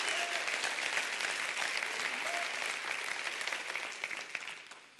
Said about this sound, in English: Come on, clap your hands.